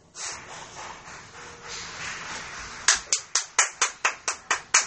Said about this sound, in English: What's the clapping for? But they were clapping in the other room, so I wanted to clap too.